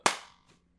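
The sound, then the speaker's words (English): A single sharp hand clap, loud and crisp with a quick fading tail, followed half a second later by a much fainter soft knock. No one speaks. “I did not start the podcast with that clap,”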